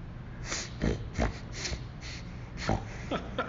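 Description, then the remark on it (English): A person imitates a bear sniffing at a backpack, making a run of short, breathy sniffing snorts, with about five quick bursts spread irregularly over a few seconds and no speech. “This bear walks up to you, and it starts sniffing your pack.”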